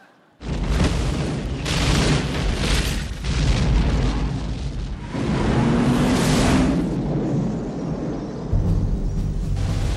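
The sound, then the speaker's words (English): A relentless barrage of booming, cinematic explosions fills the whole stretch, loud, with rumbling blasts overlapping one after another and no voices. “There's going to be explosions and there's going to be long, stilted speeches.”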